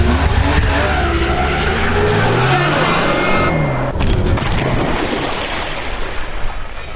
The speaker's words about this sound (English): Get off the hood! Turn off the engine! Get off!